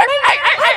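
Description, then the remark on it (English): A person imitates a Chihuahua with quick, high-pitched yappy barks, a few sharp yips in rapid succession, loud with no other sounds. “Now Chihuahua big.”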